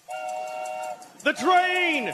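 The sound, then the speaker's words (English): A train whistle blows a steady, sustained note for about a second, then a louder, wavering blast with a falling pitch follows, with what sounds like a voice mixed in. “The train!”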